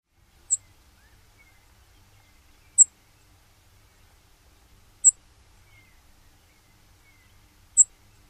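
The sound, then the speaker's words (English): A Brewer's Sparrow gives four thin, high-pitched call notes, short sharp chips spaced a couple of seconds apart, alone against a quiet background. “Last is the Brewer Sparrow.”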